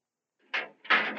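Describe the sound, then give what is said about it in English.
A living compartment door closes and its lock clicks into place: two solid mechanical bursts about a third of a second apart, the second longer and scraping, with no voices. “Just get back in that living compartment and lock the door.”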